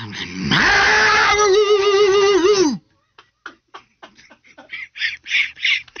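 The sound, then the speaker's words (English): A man imitates an aggressive dog: a long, loud, strained growl that rises and wavers, then a string of short, quicker bark-like bursts. “I mean, it sounded like for one, the dog got aggravated and then started barking.”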